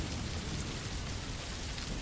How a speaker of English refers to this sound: But what a great experience getting soaked in the rain. It's been a long time.